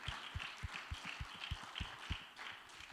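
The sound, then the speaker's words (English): A church audience clapping hands in praise to the Lord, a dense crowd of claps with a steady underlying beat and bright, crackling texture, sustained for the whole stretch without any talking. “Let's give the Lord a mighty hand clap of praise.”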